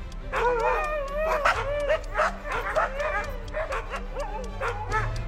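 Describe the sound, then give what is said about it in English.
A dog barks and yips excitedly in celebration in quick, high-pitched bursts, fairly loud, with whiny, whimpering yelps mixed in over a steady low background hum. “Here's the Alpha Dog celebrating.”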